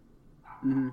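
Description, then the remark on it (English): A dog gives a single short, tonal bark that rises quickly and holds for a moment before cutting off, moderately loud against a quiet background. “And maybe when the game comes out, and if it's good, like for the relaunch, that dog that's barking can play it, and maybe it'll stop barking.”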